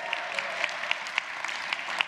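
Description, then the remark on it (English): An audience applauding: a steady, dense wash of many hands clapping, with a few sharper claps popping out at irregular moments, moderately loud and sustained throughout, with no speech over it. “So let's give them a cheer to let them know that you are here with them.”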